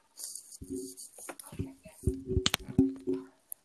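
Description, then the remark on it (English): Rustling and scraping as a cover is pulled off for an ASMR segment, with crinkly hiss, a few squeaky handling noises, and a short sharp click at the end. “Taking off the cover.”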